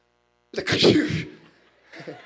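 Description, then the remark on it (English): A single loud sneeze bursts out sharply, followed by a brief breathy trailing sound and a faint voiced noise just after. “God bless you.”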